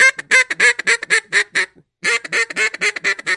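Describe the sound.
A duck call blown loud in rapid, bouncing hen quacks imitating refuge feed chatter: a quick run of about a dozen notes, a brief pause, then another fast series.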